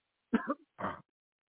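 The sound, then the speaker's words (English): A person coughs during a healing prayer, two short rough bursts about half a second apart, the second breathier and noisier, with silence around them and no talking. “By the deep breath and cough.”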